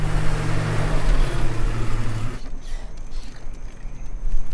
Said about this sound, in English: Jeep's kind of noisy. I might have an exhaust problem.